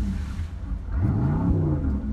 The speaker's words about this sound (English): And there are boats behind us. So, just like trains, you know, this is like Train Spotting P2, except it's boat spotting.